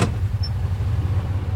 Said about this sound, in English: Like with this little tractor he drives around to save gas,